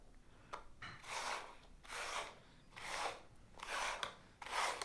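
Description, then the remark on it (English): Cups slide and shuffle across a tabletop, with a Hershey's Kiss hidden under one of them, in a steady rhythm of about four soft, raspy scraping swishes, each lasting under a second, with no talking. “I'm going to hide this Hershey's Kiss under this cup.”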